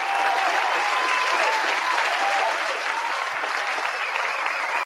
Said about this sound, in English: I'm going to give her an applause.